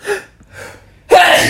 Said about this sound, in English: Oh, I need to sneeze. Oh.